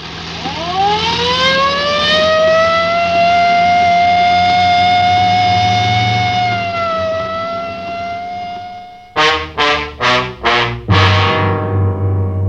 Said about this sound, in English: Well, I better use the light and siren, Frank. We may not have much time.